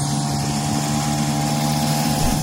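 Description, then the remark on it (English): A moped engine drones loudly as the moped is ridden around in Florida, a steady buzzing hum with a constant pitch that holds for the whole stretch, with no voices over it. “So just for clarification, that was not me on the back of this moped.”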